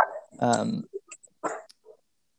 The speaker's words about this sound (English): I got dogs back here.